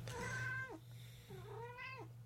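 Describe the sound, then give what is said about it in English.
A cat meows twice, two drawn-out, clear meows that rise and then slide down in pitch, separated by a short pause, over a steady low background hum. “Look at the cat.”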